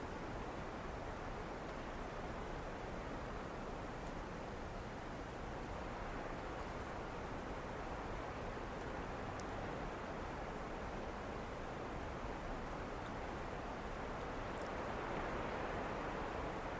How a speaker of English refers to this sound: And as you listen to the rain, you listen to the sound, sensing the awareness that's here, that tender, open space of awareness that's listening and feeling the moment.